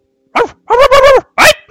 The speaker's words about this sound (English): And then it just stops. What was it again? It kind of cut out. You heard a bunch of barking in the back kitchen, and then some yelping, and then it just cut off abruptly.